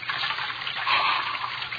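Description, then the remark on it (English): Churning water sloshes and gushes continuously in a drowning sound effect, swelling briefly louder midway, with no voices present. “Stepped out. Water over my head. Filthy water. Pulling me under.”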